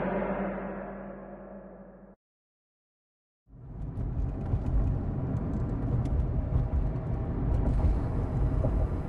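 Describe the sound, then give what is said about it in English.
A car's engine and road noise rumble steadily, stop for a moment of silence, then return louder and fuller, with a continuous roar of tires and motor and no voices. “I'm supposed to drive you straight there.”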